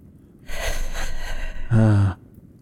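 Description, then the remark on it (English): A voice imitates the ragged breathing of a figure with a bag over their head in a darkened room: a long, rough, hissing breath followed by a short, strained voiced gasp, then quiet. “They are breathing raggedly.”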